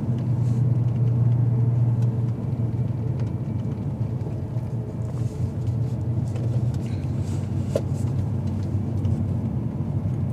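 Steady low engine and road rumble fills the inside of a moving car, a continuous droning hum with faint higher road noise and a few soft clicks, no one speaking.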